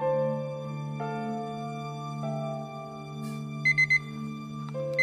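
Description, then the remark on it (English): A pager beeps three times in quick, even succession over a steady, sustained musical drone, followed by one more short beep near the end, signalling that a jury verdict is in, in 2000. “Oh, he's beeped.”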